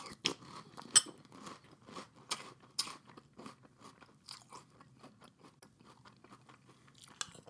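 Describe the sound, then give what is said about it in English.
Crisp crunching of French Toast Crunch breakfast cereal being chewed, a steady run of irregular bites and crackles that are sharpest at the start and soften slightly toward the end, with no talking. “French Toast Crunch”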